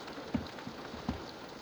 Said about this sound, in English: It is a rainy day today.